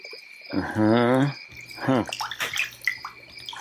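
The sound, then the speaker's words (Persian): A small splash of water as a fisherman throws a baby fish caught in his net back into the river, with brief watery sloshing and dripping, after a short burst of voice. “صبر کن الان در میارم میندازم تو آب که برگردی پیش مامانو بباد.”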